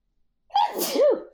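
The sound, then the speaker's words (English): A single loud sneeze starting with a sharp intake and ending in a voiced, tonal burst, with silence before it. “Bless you.”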